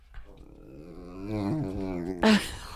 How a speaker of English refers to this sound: My mom is recording the dogs fighting.